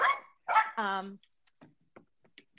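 The speaker's own dogs bark two or three times in quick succession, fairly loud, the last one stretching into a higher yelp, followed by quiet, scattered faint sounds.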